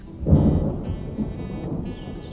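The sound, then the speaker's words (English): A deep rumble of thunder rolls in over steady, hissing rain in a monsoon thunderstorm in Arizona, swelling loud early then settling into a continuous downpour with faint crackles and drips throughout. “But the blessing of rain doesn't come without consequence.”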